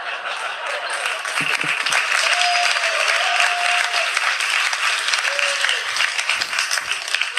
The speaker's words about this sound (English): Oh, sure, the picture gets applause. Me, all my hard work.